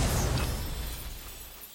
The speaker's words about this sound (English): His laughter turns to a wretched scream, which rings in your ears. The apartment shakes violently. Then both Verlis and the crystal shatter.